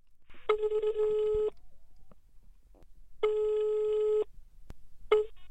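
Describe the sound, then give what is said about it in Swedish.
A telephone ringback tone sounds twice as a call from the local newspaper Extra Östergötland is placed, each steady ring lasting about a second with a long pause between, followed by the start of a third ring cut short. “… heter jag och ringer från Extra Östergötland, lokaltidningen.”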